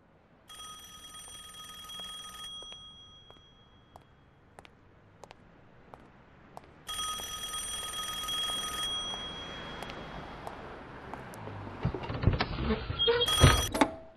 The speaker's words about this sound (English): Would you answer the ring of a phone in an empty phone booth down a lonely street?